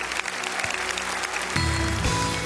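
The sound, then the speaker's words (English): An audience claps their hands together to praise the Lord in a dense, steady wash of applause. Sustained organ-like tones swell underneath, growing fuller partway through, with no one speaking. “Let's all clap our hands together and praise the Lord.”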